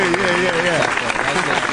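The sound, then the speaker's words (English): Steady clapping fills the whole moment, a dense crackle of many hands, with a voice talking or calling out over the top of the applause. “We actually have to give you, I was about to go to our freestyle, but no, we have to give you a young clap here, my boy, a young clap.”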